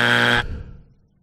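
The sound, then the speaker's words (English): A loud, harsh electronic buzzer blares for about half a second with a dense, steady harmonic tone, then cuts off abruptly and leaves a faint low rumble fading away. “Ah, you can't buzz that.”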